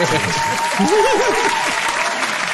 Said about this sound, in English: Hit the round of applause button